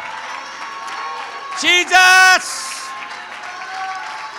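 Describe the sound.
An audience claps their hands to the Lord in praise, in a steady, dense, continuous wash, while a voice shouts out loudly over it partway through and other voices murmur underneath.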